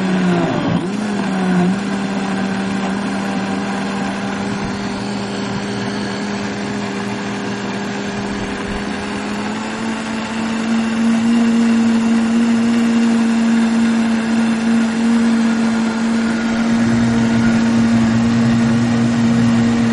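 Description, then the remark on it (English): A loud, steady blender motor with cinnamon inside whirs continuously, its pitch stepping up partway through as the speed increases, with a dense buzzing hum throughout and no talking. “Okay, so we're going to start this blender up.”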